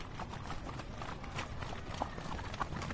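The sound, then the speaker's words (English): Steady clip-clop of horse hooves on a hard road as a horse-drawn wagon rolls by, a continuous rhythmic patter of sharp knocks over a low rumbling wheel noise. “The wagon passed, and I watched it sidewinder into the side of a hitching post.”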